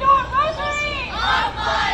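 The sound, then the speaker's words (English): A crowd of protesters shouting and chanting together outside the U.S. Supreme Court in Washington, D.C., demonstrating after the court's opinion striking down Roe v. Wade. A dense wash of overlapping raised voices that swells and dips continuously, with no single clear speaker standing out. “Supreme Court, where demonstrations have continued since the release of the court's opinion striking down Roe v. Wade Friday.”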